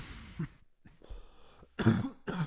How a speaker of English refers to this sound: Don't cough into the mic either.